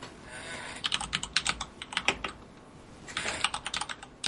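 Rapid clacking of keys on a mechanical keyboard, close and crisp, typed in two quick bursts separated by a short pause, with no voices.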